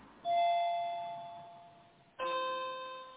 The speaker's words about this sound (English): It sounds like a clock, actually.